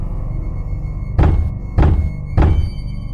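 Three heavy, dull thumps land at a steady pace, a hard fist pounding on drywall in a residential complex, each one a broad muffled impact standing out over a low rumbling background.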